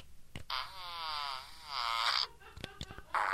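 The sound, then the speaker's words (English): A poop emoji novelty pen plays a long, buzzy electronic fart sound effect with a wavering pitch for nearly two seconds, followed by a few short clicks and the start of another tinny burst. “There's seven different rip-roaring fart sounds is what it says on the cover.”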